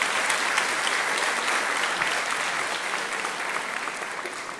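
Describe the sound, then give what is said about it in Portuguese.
An audience applauds the Lord, clapping steadily in a dense, sustained burst of applause, loud at first and tapering slightly toward the end, with no talking over it. “Você pode dar um aplauso ao Senhor por causa disso?”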